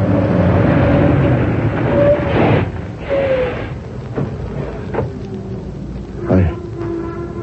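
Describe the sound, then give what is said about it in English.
A loud vehicle crash as a truck hits a car: rumbling engine noise broken by several heavy, crunching impacts spaced a second or two apart, with a ringing, metallic tone lingering afterward. “Hey, that guy driving the truck, he's acting crazy.”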